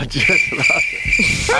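A crickets-chirping sound effect plays throughout, a steady high-pitched trill that holds without a break, while someone talks over it at a lower level.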